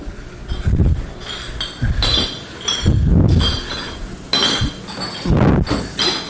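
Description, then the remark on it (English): Glass items clink together repeatedly in a loose, irregular rhythm, several bright chinks and knocks with brief pauses between, as glassware is handled or set down in a kitchen. “It's glass clinking together.”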